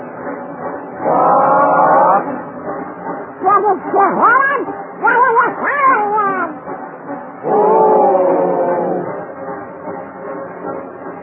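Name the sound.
freight train passing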